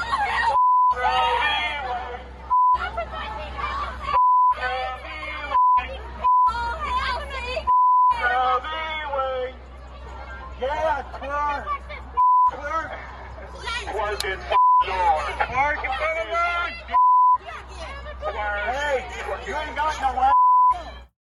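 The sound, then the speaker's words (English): A loud protest crowd in Washington, D.C. shouts chants, including "Hail Satan!", in rhythmic bursts, raw-sounding, repeatedly cut off by a steady high censor bleep that pops in and out between the yells. “There was one in D.C. the other day where they were actually shouting "Hail Satan!"”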